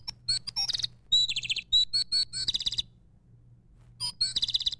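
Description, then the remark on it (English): A pet bird chirps in quick, bright bursts of rapid tweets, then pauses briefly before another lively flurry. The bird sounds clear over a low, steady background hum. “I've seen so many people get just totally excited over Larry the Bird”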